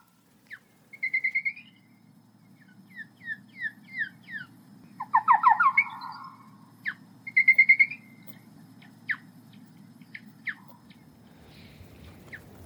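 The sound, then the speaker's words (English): Acoustic bat lure set up at a harp trap, slowed down ten times: a run of short, high, downward-sweeping chirps and rapid trilled bursts in irregular groups, over a low steady rumble, with no one speaking. “This audible clicking you can hear is the sound of the acoustic lure which is set up at this harp trap, but if we slow it down by 10 times, this is what it sounds like.”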